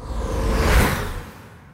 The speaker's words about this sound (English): Okay, whooshy paper-sounding thing. That one sounds fluttery, so flutter whoosh.